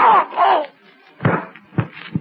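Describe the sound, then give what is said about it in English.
A strained, moaning cry gives way to a pause, then a sharp gunshot bang as a masked man's gun fires while his arms are seized, followed by two more short, heavy thuds in quick succession. “Springing forward, Candy Myers' hands are closing around the masked man's arms as the gun fires.”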